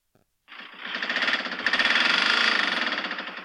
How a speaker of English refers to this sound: Anyone have a 1.9 TDI 130 engine? Mine sounds bad. Now, I will add that there's sounding bad and there's this.